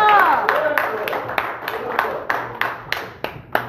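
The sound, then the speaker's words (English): A group claps together as a clap of praise in a steady rhythm, roughly three claps a second, the sharp hand strikes gradually thinning and softening as the applause dies away. “clap of praise.”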